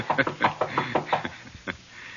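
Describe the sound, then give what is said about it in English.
A quick series of firm knocks on the door of apartment 212, rapping in an uneven rhythm, then a short pause and one last knock before it falls quiet. “Do we break in, or do I pretend I'm a gentleman and knock?”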